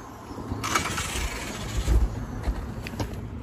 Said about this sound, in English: That sucks, man. His car just died right there. No, it's out. Is it out of gas? It's overheating, probably. It sounds like it's overheating. That car's dead.